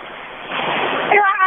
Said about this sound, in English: The rain here is heavy and the thunderstorm is very noisy.